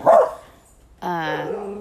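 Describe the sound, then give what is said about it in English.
A dog gives a short, sharp bark, then after a brief pause lets out a longer, drawn-out tonal bark, both loud with no talking. “Did I forget to mention that I have dogs? And the neighborhoods have dogs?”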